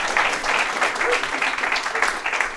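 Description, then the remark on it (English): An audience at a packed live show in London applauds steadily, for those who travelled from outside London, a dense wash of many hands clapping at an even, fairly loud level with no pause throughout. “Round of applause for the commute.”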